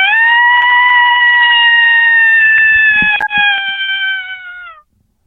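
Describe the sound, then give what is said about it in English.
A single long, steady subtle interrogation howl lasting nearly five seconds, loud and clearly pitched. It holds level, then slides slightly lower at the end, with a few faint clicks partway through. “This would be like a subtle interrogation howl.”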